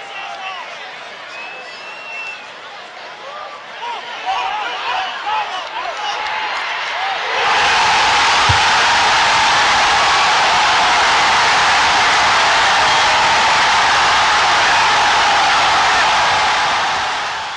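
A huge stadium crowd of Cubs fans cheers a World Series win, a dense murmuring roar that suddenly swells into a loud, sustained wall of noise almost like static, holding steady until the end.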